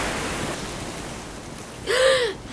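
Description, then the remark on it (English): A steady wash of ocean surf rolls on throughout, hissing and rumbling at moderate volume, with a short, louder tonal swell rising and falling near the end. “The tide seems to be breaking for it. But watch out for waves.”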